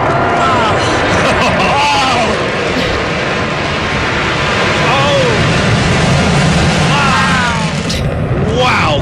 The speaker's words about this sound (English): I thought we couldn't escalate it any higher after that performance, but that, the B-1B Lancer, that flyover was incredible. It was earth-shaking.